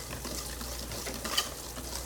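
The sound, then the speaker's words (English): Steady, busy clinking and scraping of a whisk working quickly inside a bowl, mixing a mixture thoroughly to get the chunks and bubbles out, continuous, with a brief brighter clink near the middle and no talking. “So anyway, so once you get this, you're gonna mix it, whisk it really good.”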